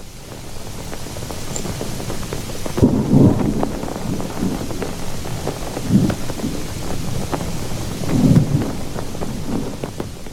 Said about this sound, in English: In a normal storm, Dublin Bay would have offered some shelter and safety to a ship in a storm. It was clear that this was not a normal storm, though, and the Palme was in trouble.